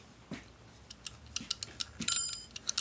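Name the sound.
kitchen timer ticking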